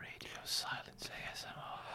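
Heavy, breathy exhales and inhales, several airy bursts in quick succession with a faint whispery quality and no clear words.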